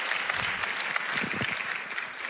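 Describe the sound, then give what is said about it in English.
A church audience applauds steadily as a new staff member comes up onto the platform, a dense wash of many hands clapping at once, sustained and fairly loud throughout with no voices standing out. “You know, they clap when you come out.”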